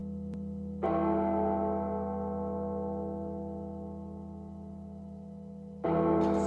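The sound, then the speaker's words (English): Two deep, resonant church bell strikes toll about five seconds apart in a song's intro, each blooming with rich overtones and a long, slowly fading hum that rings out alone with no voices. “the church bells are going off like there's no tomorrow”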